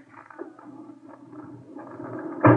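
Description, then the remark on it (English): A body drawer in the city morgue, holding the body of Vince Larimer, a man shot to death, rolls out with a steady, grinding rumble that builds gradually and ends in a sharp, loud metallic clunk as it stops. No voices are heard. “The setting for the sentimental reunion was the city morgue. Roll him out”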